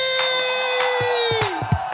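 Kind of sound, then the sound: crowd, crowd cheering and screaming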